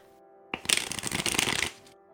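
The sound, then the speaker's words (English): A deck of tarot cards is given a little shuffle before a one-card draw, one brisk riffle lasting just over a second, a rapid flutter of cards over a faint steady hum, with no talking. “All right, so I shuffled it twice, and I'll do a little shuffle like that, and I'm going to cut it, and we'll flip the card.”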